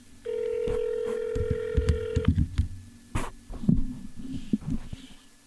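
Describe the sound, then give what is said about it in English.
A single long ringback tone from an outgoing phone call plays through a small phone speaker held up to a microphone for about two seconds, with low thumps and handling noise, followed by muffled clicks and rustling, and no one speaking. “I'm holding my phone up to the mic.”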